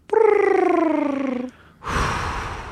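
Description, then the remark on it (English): A human voice imitates a bird call for a guessing game, with one long, warbling tone that slowly slides downward in pitch, pulsing slightly, then stops and gives way to a loud, breathy hiss. “So you'll make the bird call and I'll guess?”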